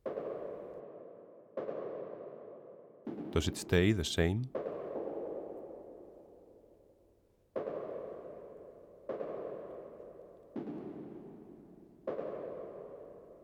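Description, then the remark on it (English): A steady series of about eight booming footsteps of a man walking in shiny leather shoes on a chessboard floor, alternating between higher and lower tones, each ringing out before the next at roughly even intervals; a voice briefly speaks early on. “Concentrate on the relation between the higher footstep sound and the lower footstep sound.”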